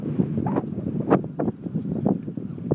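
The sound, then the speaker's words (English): Irregular metallic clanks from boats in a boatyard ring out several times over a steady rush of wind buffeting the microphone, with no voices present. “Sure if you can hear the clanking of the boats in the boatyard.”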